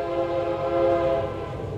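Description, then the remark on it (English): A passing train's horn blares in one long, steady chord, fairly loud, over a low rumbling of the train, heard during a baseball game, with no voices. “one of the very few trains we've had here today.”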